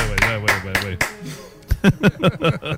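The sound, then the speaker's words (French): A few sharp, evenly spaced hand claps ring out over a sustained tone, then stop, and a voice speaks in short bursts. “Ah, applaudis.”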